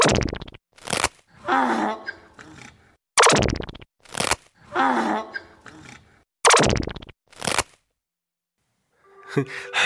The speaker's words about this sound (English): What is up with the sound that donkeys make? My goodness.